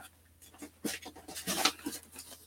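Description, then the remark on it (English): Crisp paper rustling and crinkling as sheets, including a receipt, are shuffled and handled, with several bright bursts of noise over a couple of seconds and no talking. “And, wow, lots of paper.”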